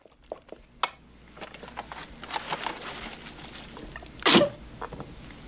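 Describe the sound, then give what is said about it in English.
A single sharp, loud sneeze, caused by a flower, bursts out near the end, preceded by scattered soft clicks and small clattering noises. “What did I just do? It's called a sneeze from the flower, but only humans are supposed to do it.”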